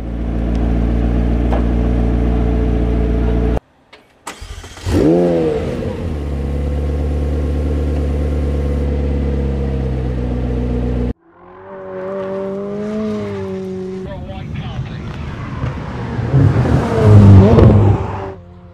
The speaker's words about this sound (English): And in the end, here is a short clip for you to hear the 765LT roaring. Enjoy, everyone!